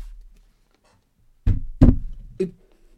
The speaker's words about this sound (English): Fucking knock on wood.